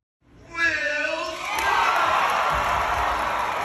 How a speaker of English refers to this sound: So here is the crowd giving Will Smith a standing O.